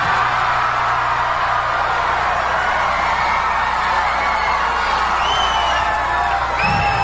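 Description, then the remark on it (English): A large crowd cheers and roars continuously, with scattered high whoops and whistles rising over the dense wall of voices, loud and steady throughout. “Of course, then again, while these people cheer, they've never been in the position even to get swiped by Lassie's tail, let alone be among stars such as AC Baby and myself.”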